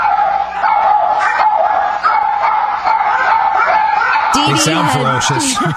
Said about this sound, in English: Well, you know, she's trying to sleep, and all of a sudden they run out of the room barking like crazy.